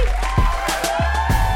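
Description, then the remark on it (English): A live audience at a Two Dope Queens show at Union Hall cheers steadily, with whoops and scattered claps in a dense, continuous wash of crowd noise. “Yeah, you guys are a hot crowd.”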